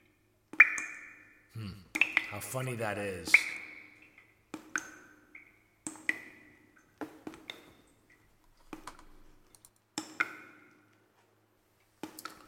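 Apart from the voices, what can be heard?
water dripping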